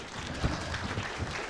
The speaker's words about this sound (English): Cool. Yeah, you can clap.